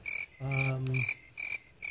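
Crickets chirp in short, evenly spaced bursts, with a single deep, throaty frog croak rising over them for about half a second. Nobody speaks.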